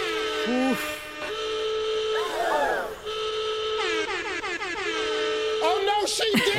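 A loud, blaring alarm sound effect of sustained horn- and whistle-like tones, broken up by warbling, sliding pitches that rise and fall, sounded for several seconds to announce a home entertainment prize bundle with a TV, soundbar and tablet.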